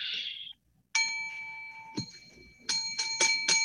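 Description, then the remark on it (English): A hand bell is struck hard about five times, ringing brightly with a sustained metallic tone, the last strikes coming in a quick run after a brief hiss and pause at the start. “Yeah, if you wouldn't smack it so hard, it would be just fine.”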